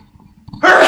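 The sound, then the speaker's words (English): A single loud sneeze bursts out abruptly near the end, preceded by a brief quiet stretch with faint low background noise. “Bless you, man.”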